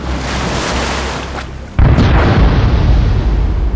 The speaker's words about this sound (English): A fireball exploded on the sea. As the flames dimmed, pieces of hull and wood and mast crashed into the water, a shredded piece of sail floating down after them.